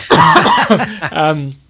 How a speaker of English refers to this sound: But excuse me as well, you've sent the cough down the line,